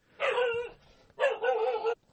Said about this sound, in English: Okay, sorry about that. I'm not going to re-record this one because the dog started barking because I'm just 20, almost 30 minutes in.